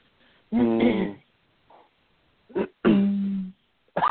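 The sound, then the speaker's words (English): A few harsh coughs come in separate bursts with short pauses between them, some throaty and drawn out, one brief and sharp, and no talking. “As we both what cough.”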